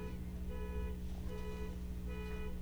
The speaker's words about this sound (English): Well, we have a car nearby whose alarm has gone off.